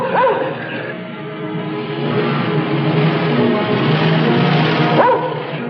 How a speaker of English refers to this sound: Am I hearing things? The other man had a hunting dog.